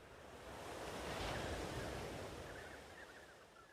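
Gentle ocean waves wash onto a sandy shore in one soft, steady swell of surf that rises and slowly recedes, heard alone with no voices.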